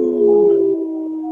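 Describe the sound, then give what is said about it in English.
A person on Native Roots Radio lets out a loud, sustained wolf-like howl, a single steady drawn-out vocal tone that holds its pitch and fades slightly toward the end. “Hey, I noticed you took your glasses off to howl”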